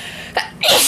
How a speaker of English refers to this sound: Ooh, I have to sneeze. Hang on.